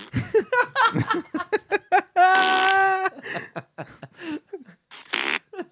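A loud, buzzy fart noise holds steady for nearly a second, surrounded by bursts of laughter and chatter, with a short hissy burst near the end.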